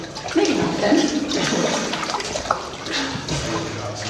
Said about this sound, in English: We swim and we duck under stalactites that jut out from the ceiling, their points hovering barely a foot above the water.